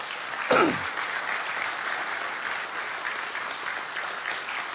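A church audience claps steadily in sustained, dense applause for the church's deacons, opening with a brief louder burst before settling into an even, continuous wash of many hands that holds at a moderate level throughout.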